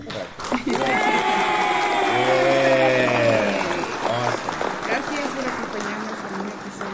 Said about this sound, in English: Hit the clap for our brothers. All right. Thank you.